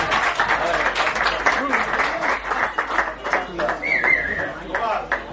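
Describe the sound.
A crowd applauds steadily for several seconds, a dense wash of clapping at an even level, with a brief whistle-like tone cutting through near the end and faint voices mixed in.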